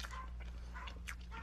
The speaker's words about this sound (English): The dog's upstairs barking.